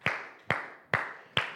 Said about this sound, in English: Let's clap our hands to the Lord and thank God for favor this morning.